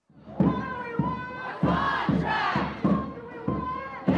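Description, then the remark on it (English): A crowd of voices chants in unison at a rally outside News Corp's corporate offices in New York City on a sunny day, supporting striking HarperCollins union workers, shouting in a steady, repeated rhythm of short bursts, loud, with many voices blending together. “It's been kind of rainy and dreary in New York City lately, but on Wednesday, the sun was out as crowds of people rallied outside of News Corp's corporate offices in support of the HarperCollins union workers.”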